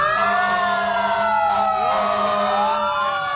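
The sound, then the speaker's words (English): Several fire truck sirens wail at once in a Labor Day parade with about seven or eight towns taking part, their rising and falling tones overlapping loudly and continuously, with a steady low engine drone underneath and no talking. “I'm glad everybody's sirens are working.”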